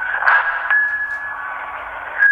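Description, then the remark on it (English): A whistle recording mapped onto a keyboard with effects added plays as a processed synth tone that sustains steadily, with bright, bell-like and mallet-struck accents ringing out here and there over a dense, buzzing midrange. It plays alone, with no talking. “It sort of sounds like a bell here and there. It sort of sounds like some sort of mallet as opposed to a whistle.”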